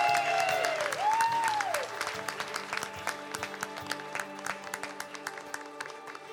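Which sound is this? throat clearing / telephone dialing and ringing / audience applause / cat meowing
audience applause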